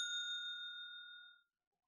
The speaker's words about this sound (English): So I'm going to hit the bell anyway.